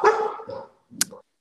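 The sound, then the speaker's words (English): A dog barks about three times in quick succession, fairly loud, the last bark sharp and slightly higher, with no voices present. “You know, that's a good indicator for the next question. What's life like with dogs?”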